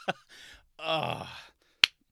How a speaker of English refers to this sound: golf claps.